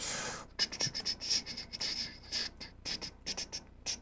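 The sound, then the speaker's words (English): Quiet, irregular clicking and tapping in short bursts of someone typing on a keyboard, with brief pauses between runs of keystrokes and no voices. “What are you typing to?”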